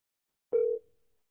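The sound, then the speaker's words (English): A single short telephone ringing tone, a steady electronic beep that cuts off after a quarter second and trails away, heard alone with no voices. “I heard the first ring, and I don't hear any more.”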